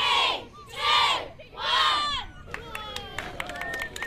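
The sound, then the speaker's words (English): A crowd of about 60 excited intermediate-age schoolgirls in Dunedin, New Zealand, lets out three loud, high-pitched waves of shrieking cheers as the World Cup trophy is unveiled, followed by scattered clapping and sharp taps under lively chatter. “Our Otago-Southland reporter Timothy Brown went along to see some excited fans as the trophy was unveiled.”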